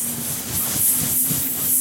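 A person makes a loud, sustained hiss lasting nearly two seconds, a steady breathy rush with a faint low hum beneath it, swelling slightly midway and again near the end.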